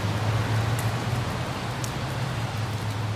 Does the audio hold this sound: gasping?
no